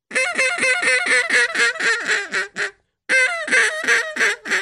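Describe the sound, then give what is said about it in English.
A duck call blown in a Cajun squeal, each note cut off with the back of the throat to give a little squeak at the end: a quick, loud run of about a dozen raspy quacks, a short break, then several more, with no talking. “That's a Cajun squeal.”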